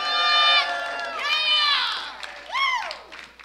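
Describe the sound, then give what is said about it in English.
A church audience cheering in praise of Jesus, with loud, sustained shouts and high whoops that swell in overlapping bursts, ending in one rising-and-falling cry; little distinct clapping stands out. “Now, while I appreciate the applause, can we make a far louder, far longer, greater one for Lord Jesus? Come on, praise Him.”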